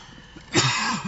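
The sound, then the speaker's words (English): A single harsh, raspy cough from a person after smoking bursts out after a quiet moment, rough and throaty as it trails off, with no talking over it. “You need a drink? No, that strawberry cough is this shit.”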